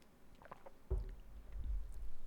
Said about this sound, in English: Use that as an excuse to drink some water.